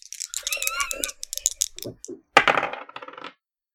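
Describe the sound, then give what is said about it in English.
Two six-sided dice are rolled for a tabletop role-playing perception check, clattering and tumbling across a hard surface in bursts, then one sharp knock followed by a rattling spin as they settle on a total of nine, with no talking. “I rolled a 9, but that's on 2d6s, so that is a mixed success.”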